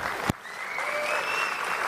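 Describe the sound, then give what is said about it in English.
A crowd claps steadily for a couple of seconds, a dense, even wash of applause with a sharp clap near the start and faint whistles drifting through it. “Then you people would have something to applaud for.”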